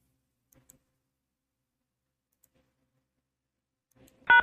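Near silence with a few faint clicks, then a single short, loud electronic tone from a telephone keypad as the pound key is pressed on the Atheist Experience call-in line, cutting off at the very end.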